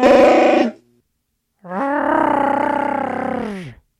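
Two loud, drawn-out roars of the Wookiee Chewbacca from Star Wars, created by sound designer Ben Burtt, a short one followed by a longer rising, warbling howl with strong tonal harmonics, with a pause of silence between them.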